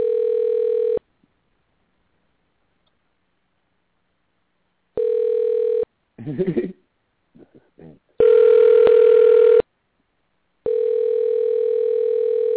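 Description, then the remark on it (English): A phone ringback tone purrs in steady, evenly spaced bursts through a handset as the call is sent to voicemail, the ring dropping in level, with a few brief snatches of talk in the gaps between rings. “I think he just sent me the voicemail. I can tell the difference in the ring.”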